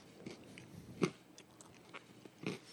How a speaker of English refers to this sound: How's that pizza sounding on the headphones? Sounds ASMR like, right there. Sounds like crunchy pizza.